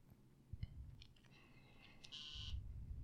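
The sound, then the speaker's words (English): A phone going off with repeated notifications: several short electronic beeps followed by a longer buzzing tone, fairly faint over a low background rumble. “Dude, your phone isn't quitting.”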